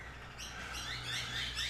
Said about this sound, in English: Listen to those birds. Oh, what now is going to get in the way of a good recording versus, right? I'm loving them. I get emails from you guys saying, I love your birds.